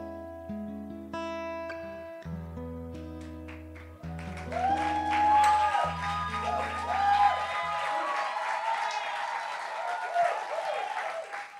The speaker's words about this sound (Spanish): Ese aplauso es para mi papá, porque él te ama tal y cual como eres, pero no te quiere dejar igual.